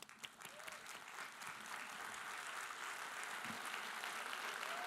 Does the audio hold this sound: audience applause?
yes